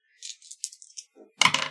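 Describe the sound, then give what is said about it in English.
Dice clatter and rattle in a cupped hand with several quick shakes, then tumble loudly across a surface in a final burst of clicking, fairly loud with no voices. The dice are being rolled for damage. “You just roll the damage.”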